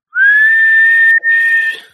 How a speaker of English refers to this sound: he's got his official Nutbush police whistle.